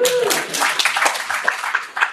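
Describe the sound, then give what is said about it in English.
An audience breaks into steady applause, a dense crackle of many hands clapping at once, fairly loud and sustained for a couple of seconds, with a brief voice at the very start. “You can applaud that if you.”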